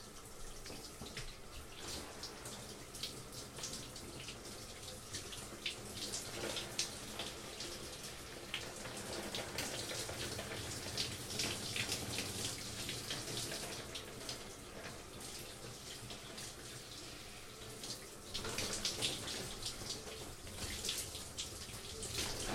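running shower water

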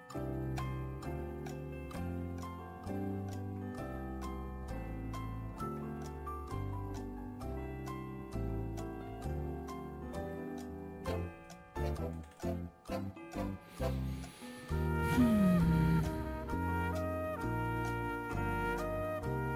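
clock chiming

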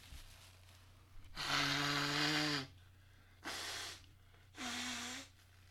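person blowing their nose

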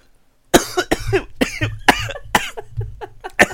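coughing

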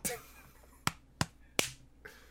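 single hand clap

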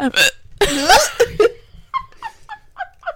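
hiccups

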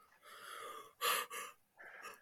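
yawn

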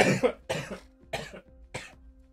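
cough

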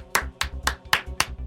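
slow clap

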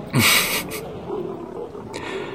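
tiger roar

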